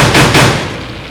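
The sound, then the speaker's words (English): Dense, loud crackling of a burning fire fills the whole clip, with two sharper bursts of popping near the start before it settles into a steady hiss. “There's a fire.”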